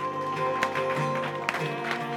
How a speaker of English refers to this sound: And everybody said, come on, give a clap offering to the Lord.